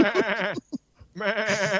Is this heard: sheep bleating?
yes